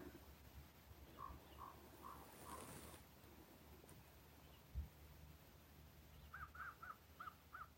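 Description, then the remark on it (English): Crows harassing an eagle caw in two bursts of quick, evenly spaced calls, four and then five, over a low, steady outdoor rumble with a pause between them. “The crows are harassing an eagle.”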